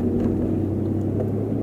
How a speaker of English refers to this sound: Is old mate awake yet? The construction next door.